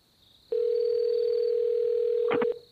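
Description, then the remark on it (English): A steady electronic telephone tone over the line holds for about two seconds, then breaks off with a brief clatter of clicks near the end. No one speaks. “It's ringing.”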